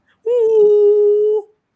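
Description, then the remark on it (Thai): Someone's voice mimics a conch shell horn as a sound effect for a story about Indian culture: one loud, steady hooting tone held for about a second before cutting off, sounding a bit like a dog's howl. “กูว่าไม่เหมือนสังอันนี้กูว่าเหมือนหมาหอนกูว่าฉากเป็นป่าช้าไม่ใช่สังแล้วเอาใหม่ครับพี่สังลูกศิลป์ใหญ่ๆกว่านี้หน่อยครับ”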